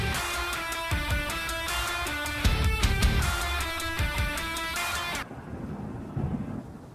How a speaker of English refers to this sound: It wouldn't be a Distorted Nation show without the lightning, thunder.